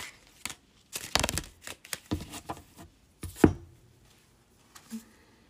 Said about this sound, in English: I have to shuffle it in two stacks because this stack is so big.